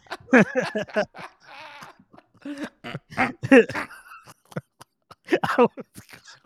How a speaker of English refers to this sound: You didn't know you're on mute or you weren't muted? I was coughing.